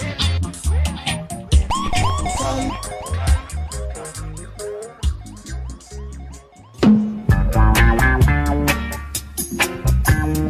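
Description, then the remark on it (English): A DJ siren effect whoops in a string of quick, repeated rising sweeps over a thumping rhythmic backing, then cuts off as a full, loud music track kicks in. “Like the next tune, which is coming right now after my sirens in.”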